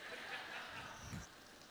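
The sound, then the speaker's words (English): Soft, steady rain hiss, faint and continuous, recorded rainfall sounds put on to play quietly with the lights turned down, with a brief low vocal sound near the middle. “And he turned the lights down. And he put on some rain sounds.”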